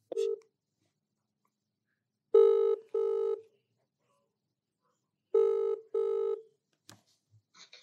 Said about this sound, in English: There's only a phone number on a piece of paper on the door. So I've rang the number.